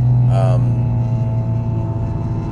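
A car engine runs with a loud, steady low drone and rough rumbling throughout, a brief higher-pitched tonal whine rising over it near the start.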